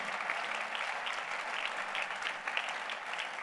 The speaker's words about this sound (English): Are you clapping your hands for the Lord Jesus Christ?